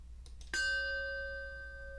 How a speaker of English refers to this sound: As we listen to the chime, let us remember our connection to the world around us.